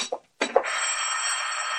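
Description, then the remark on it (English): A telephone rings with a steady, continuous metallic trill that holds at an even loudness, preceded by a couple of brief knocks or clatters. “Mr. Bailey, the phone, you busted it.”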